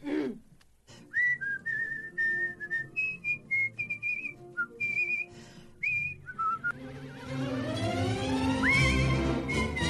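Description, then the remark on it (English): A singer whistles a lively birdlike tune as the robin that joins her in a song, mimicking a robin with quick chirps, trills and short warbling phrases, clear over soft orchestral accompaniment that swells toward the end. “… also provided the whistling of the robin that joins her in the song, number 13.”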